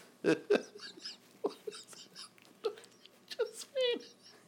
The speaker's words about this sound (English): What was that noise you just made? That's... Oh, boy. Okay. All right. Some kind of hiccup?